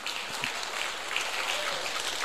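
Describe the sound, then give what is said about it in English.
A crowd applauds the Lord steadily, many hands clapping in a dense, even wash of sound that holds at a moderate level throughout, with no voices standing out. “Give the Lord a great hand clap for that.”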